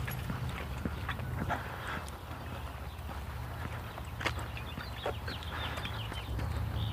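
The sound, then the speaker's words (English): A small dog out with a man in the morning shuffles and pants, with light scattered tapping and clicks over a steady low outdoor rumble; faint chirps rise briefly near the end. “Happy dog this morning.”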